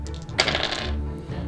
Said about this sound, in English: That sounded like more than 3d6. That sounded like 8d6. Well, that's because I got one really, really big dice. It's beautiful. I love it.